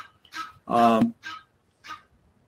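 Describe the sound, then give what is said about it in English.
An Egyptian goose named Gabby, come for breakfast, calls in a short series of harsh, honking notes: a soft one, a loud drawn-out rasping honk, then two briefer, quieter calls spaced apart. “That's Gabby the Goose. She's telling me she's here for breakfast, and I need to wrap up this Bible study and feed her.”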